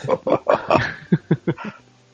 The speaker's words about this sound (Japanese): なんでワンちゃんがおるんですか。